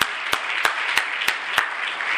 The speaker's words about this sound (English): Thank you so much, Tony, for delivering that message only as Tony can. We're super appreciative of you, bro. Let's give Tony another round of applause.